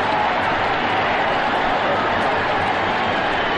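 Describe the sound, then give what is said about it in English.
A loud, sustained roar from a huge crowd of almost 63,000 fans at an American football game between the Raiders and the Jets, a dense wash of cheering voices that stays steady and unbroken throughout, with no single voice standing out. “Listen to this crowd.”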